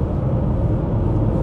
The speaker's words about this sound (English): Whoa, dude, look at this plane. I am literally right under a plane right now, awesome. Landing at the airport. Whoa, dude! Yeah, it's pretty impressive. Makes you realize how big planes are, you know? That's a big fucking plane.